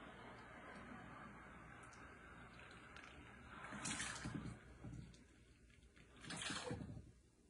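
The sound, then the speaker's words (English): Two cups of boiled water are poured into a metal bowl in two short, splashy bursts, a hissing rush that rises and fades, with a quiet pause between pours. “All right, I'm just gonna use a metal bowl here. And the water is done, boiled.”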